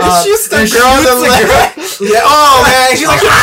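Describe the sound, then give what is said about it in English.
A voice mimics someone screaming in agonizing pain: loud, strained, wavering cries in two long bursts split by a brief breath, continuous, edging toward a laugh. “Screaming in, like, agonizing pain.”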